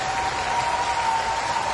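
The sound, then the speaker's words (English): A large crowd of hundreds of people applauds steadily as a ship's captain walks down the stairs off the ship onto dry land, a dense wash of clapping from many hands that stays loud and unbroken throughout, with no one speaking. “So hundreds of people, at least, maybe thousands, I don't know, applauding for this man due to their respect for him.”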